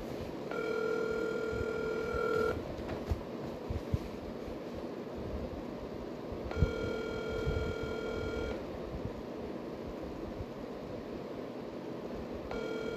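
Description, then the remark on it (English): An outgoing phone call rings out unanswered: steady two-second ringback tones repeat about every six seconds, two full rings and the start of a third, over a constant background hiss with no one speaking. “So we're gonna get David on the phone.”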